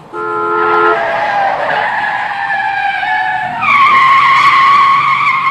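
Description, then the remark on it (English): A car skids with a loud, sustained squeal of tires lasting several seconds, the shrill screech wavering in pitch and swelling louder toward the end, with no voices. “Jeez, I would have hit that Rolls Royce. Those things are tanks.”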